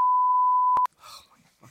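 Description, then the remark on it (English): A loud, steady censor bleep holds for almost a second, with a tiny break near its end, then cuts off abruptly to quieter, muffled voices. “A continuous every beep word.”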